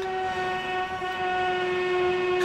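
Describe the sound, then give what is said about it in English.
A power drill whines steadily, a sustained mid-pitched tone with bright overtones that holds at an even, fairly loud level throughout, with no voices. “Forgive me, we're talking about Jupiter in Aries and there's drilling, so you know, happens.”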